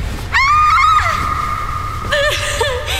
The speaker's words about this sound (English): For a moment, nobody moved. Nobody breathed. And then Brittany screamed.